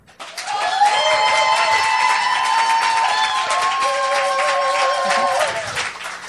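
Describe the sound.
An audience at a debate applauds loudly for about six seconds to pick the winner, dense steady clapping mixed with whoops and cheering voices, then it tapers off abruptly at the end.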